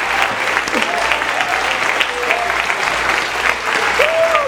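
A church audience claps hands in praise of the Lord, a dense, sustained wash of applause, with scattered voices and faint whistles or cheers rising above it.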